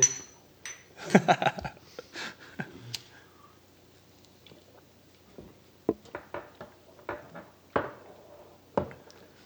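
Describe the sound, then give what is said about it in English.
Glasses clinking together in a toast: a quick burst of clattering clinks, then a string of sharp, separate taps and chinks spaced over several seconds, fairly quiet, with no talking. “Well, here's to the first one. I guess cheers.”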